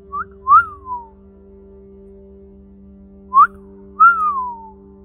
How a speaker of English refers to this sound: I whistle at my wife. When I see her out in public, on the street, if we're not together, I see her and I whistle.